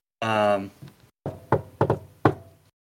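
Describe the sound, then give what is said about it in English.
A brief voiced sound, then a series of four or five solid knocks on a front door in an uneven rhythm, each fading quickly. “So, yeah, can we approach the door? And yeah, go ahead. Knock.”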